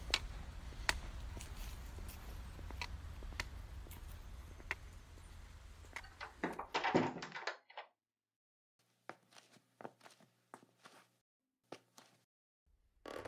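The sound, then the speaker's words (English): A door is handled in a noisy, windy outdoor space; around the midpoint it shuts with a thump and the background drops away to quiet indoor ambience with scattered soft knocks and footsteps. “Quickly, come inside and then close the door behind me.”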